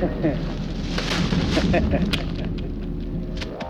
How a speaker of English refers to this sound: Understand why we need the firecracker?